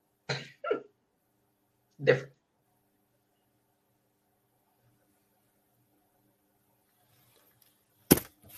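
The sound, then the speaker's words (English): A man coughs: two quick coughs, then a third a moment later, followed by a long quiet stretch and a sudden sharp burst near the end. “I'm sneezing. He's coughing.”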